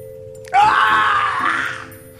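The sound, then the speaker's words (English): A single loud, anguished performed scream of pain from a character running out bursts out abruptly and holds for over a second before trailing away, with a faint steady hum beneath it. “She reacts as Gottfried runs out, screaming in pain.”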